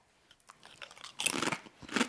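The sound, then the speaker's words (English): Crisp crunching of a salty, rosemary-flavored potato chip being bitten and chewed, with a few soft crackles building into a dense burst of crunches, then another loud crunch near the end. “Very crunchy. Oh, my. Super crunch.”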